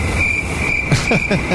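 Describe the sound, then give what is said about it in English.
A cricket sound effect: a continuous, high-pitched cricket trill rings steadily throughout, layered over a low rumbling background with a few brief, soft knocks near the end. “I needed the cricket sound.”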